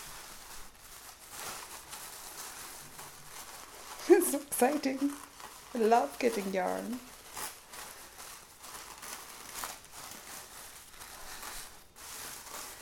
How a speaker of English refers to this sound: Okay, so now I'm going to open the tissue paper.